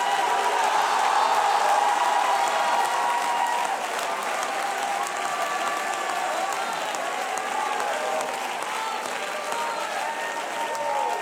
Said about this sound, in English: It's time for the apostolic church to arise. And if you're ready, you ought to clap your hands and shout hallelujah.